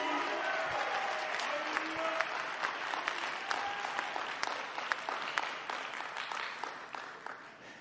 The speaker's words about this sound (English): Give God one more round of applause.